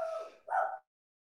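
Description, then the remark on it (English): Two quick dog barks in close succession, clear, the second a little stronger, followed by silence, heard in a newsroom. “You hear those dogs?”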